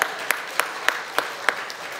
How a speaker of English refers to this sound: You got a new chair? Ooh. Let's give a round of applause for the chair.